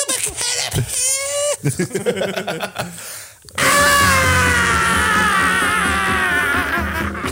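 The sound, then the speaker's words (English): A person voices a mock caterpillar scream: a few short, squeaky vocal cries, a brief pause, then a loud, sustained, wavering high-pitched wail held to the end. “That's the least convincing scream I've ever heard in my life. Well, caterpillars don't yell very loud.”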